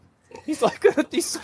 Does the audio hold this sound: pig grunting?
yes